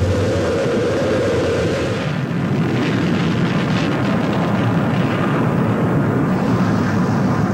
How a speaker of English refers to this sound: 5, 4, we've gone for main engine start. We have main engine start.